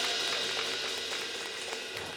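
A church audience applauds the kids after their worship, many hands clapping together in a dense, crackling wash of sound that holds an even level throughout, with no voices standing out.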